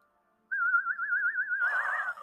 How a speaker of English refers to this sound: I wish I could whistle like that.